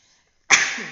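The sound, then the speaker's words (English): A single sudden, loud sneeze bursts out after a moment of quiet, with a sharp hissing onset and a brief trailing rasp as it fades. “So, I'm really sorry for this sneeze, but I think this is part of it.”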